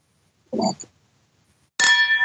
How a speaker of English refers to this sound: I would rather cheers the glasses again.